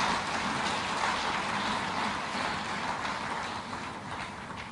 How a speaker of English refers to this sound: Ate tumukubireko mu ngalo kubanga Let us clap for him.